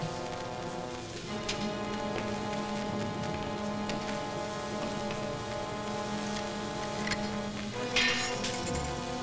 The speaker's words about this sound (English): Conveniently placed thunderstorm.